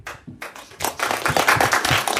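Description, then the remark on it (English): A small group breaks into applause, a few scattered claps quickly swelling into a steady, dense round of hand clapping that stays loud. “Round of applause”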